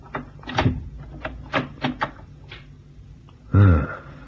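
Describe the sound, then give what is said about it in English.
The handle of a cabin door on an old Oriental-built ship with carved woodwork rattles and clicks several times in quick, uneven bursts, then after a pause the door creaks open with a short, loud groan. “And now's my chance to try the door handle.”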